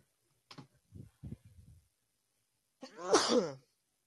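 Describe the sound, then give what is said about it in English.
A few soft, scattered clicks and taps, then a single loud sneeze with a sharp breathy burst that fades quickly, followed by quiet. “Bless you.”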